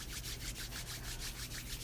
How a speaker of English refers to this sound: Rub your hands.